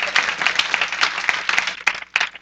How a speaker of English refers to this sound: Oh, somebody give a Lord a hand clap of praise in this house.